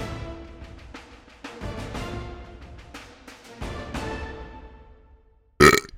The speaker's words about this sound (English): Boom. Nope. Got that burp.